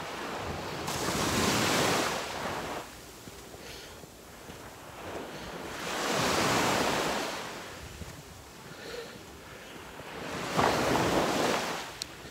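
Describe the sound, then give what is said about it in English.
Gentle Gulf waves wash onto a beach at Bonita Springs, Florida, the water very calm, in three slow, soft surges a few seconds apart, with a light breeze hissing faintly between them and no voices. “Walk Along the Gulf: Bonita Springs, FL Walking Beach Toward Naples”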